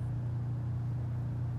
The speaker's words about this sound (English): I'm so grateful for the traffic.